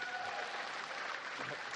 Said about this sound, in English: And then speaking of, you know, things that happen, you were promoted to soloist last year after 8 years with the company. Yes, applause.